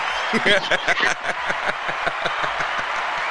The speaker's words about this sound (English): No, don't cheer for that shit. Don't cheer for that. God damn, why they cheering for you? They cheering for you because they know you my dog.